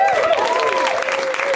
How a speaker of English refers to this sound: You can feel free to clap for us.